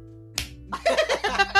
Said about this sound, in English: Why are y'all slapping each other, oh, man?